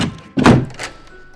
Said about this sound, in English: I entered hoping for shelter. The door closed behind me and locked itself.